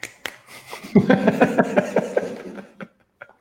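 A quick flurry of finger snaps, sharp and crisp, clustered over a few seconds with a soft murmur of voices or light laughter running beneath them before a couple of final snaps.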